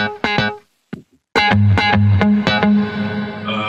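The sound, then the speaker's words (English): A dry, unprocessed simple guitar sample plays a short rhythmic phrase of bright plucked chords, with a brief pause early on, then steady repeated stabs over a sustained low tone, fairly loud. “But yeah, it's a super simple guitar sound from Goliath.”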